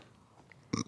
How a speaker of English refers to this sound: Oh, God, I totally just burped in the fucking microphone. I'm sorry.